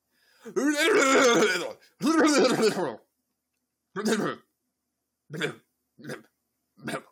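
Coughing into a microphone: two long, strained, groaning bursts, then four short, sharp coughs spaced out over the next few seconds, loud with silence in between.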